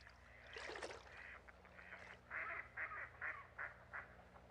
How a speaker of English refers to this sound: So that was the black duck.